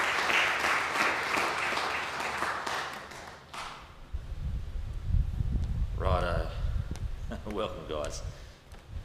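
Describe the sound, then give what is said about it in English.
A crowd applauds guests who drove 13 hours to attend, with dense, steady clapping for a few seconds, then it fades out and a low rumble and a man's voice take over. “So I think that deserves another round of applause, to be honest with you.”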